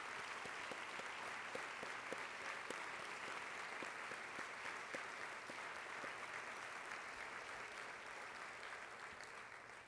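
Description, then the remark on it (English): Sustained audience applause recognizing the Board of Education at an annual event, a dense, steady wash of many hands clapping at even volume for the full ten seconds, with no voices on top. “You deserve our gratitude, our respect, and our applause.”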